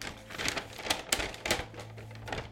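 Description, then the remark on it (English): Crisp parcel paper crinkles and rustles as a parcel is unwrapped, with several sharp crackling bursts amid a steady rustle and no voices. “Why do you insist on wrapping these things up in parcel paper between every experiment if not to antagonize me?”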